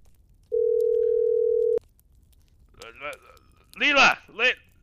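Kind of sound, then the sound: signal or alarm, telephone dial tone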